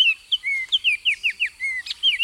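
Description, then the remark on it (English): A Wilson's warbler sings a quick, even series of about a dozen bright, sharp chirps, clear, with a few fainter bird notes in the background and no talking. The warbler flits among dark green coffee trees covered in white blossoms. “The warbler flits among the dark green coffee trees, now covered in richly scented white blossoms.”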